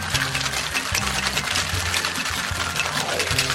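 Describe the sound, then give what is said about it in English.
Two cocktail shakers, one in each hand, are shaken hard with ice for a drink of Cutty Sark, orange curacao, lemon, House Bricks Demerara, and orange saffron and grapefruit bitters, making a loud, continuous rattling clatter with a fast, steady rhythm. No one speaks. “He's double fisting the shakers.”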